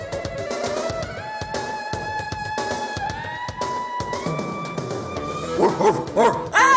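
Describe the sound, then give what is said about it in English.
A small dog yaps in several quick, high-pitched barks toward the end, following a steady sustained tone and rhythmic background sound that fill the first part. “Oh no, a dog!”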